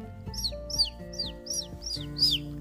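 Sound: pet bird chirping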